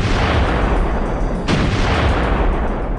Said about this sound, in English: So two, you know, explosive booms in this small room.